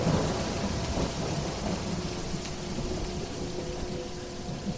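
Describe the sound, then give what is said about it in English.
Thunder rumbles low and heavy beneath a steady downpour of rain, a dense, continuous storm sound that stays loud throughout with no voices. “The crack of thunder swallowing his choking cries.”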